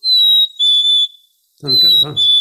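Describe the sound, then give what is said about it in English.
A black-capped chickadee's cheeseburger song: clear, high, pure whistled notes, two held tones, a short pause, then more whistling with a low voice-like sound underneath. “Well, that was indeed a black-capped chickadee, and they have a couple different songs. The first one, we sometimes call it the cheeseburger song.”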